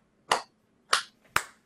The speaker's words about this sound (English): Golf clap.